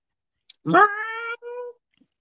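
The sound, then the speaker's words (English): A single drawn-out cat meow, clear, rising then holding steady before trailing off in a short second burst, preceded by a faint click. “He's like, oh, that's a good kitty there. That's a good kitty.”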